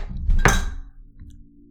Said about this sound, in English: I almost just knocked my liquid-filled cup right off the desk onto the floor. So... that was a little stressful, but now I'm calm again.